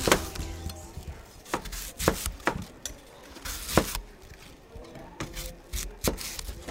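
A volunteer turns a hand-crank apple peeler, called an apple master, that spins the apple on a central spike while a blade follows its surface, peeling the skin in one long strip; sharp clicks and knocks every half second or so over a soft, continuous scraping of the blade. No one speaks.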